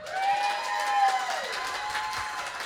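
An audience applauds to vote for a muzzle and a leash, a steady, dense wash of clapping for a few seconds, with a shrill whistle that holds and then slides downward partway through.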